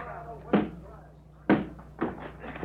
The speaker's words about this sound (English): Let's get inside. I'll break open the door.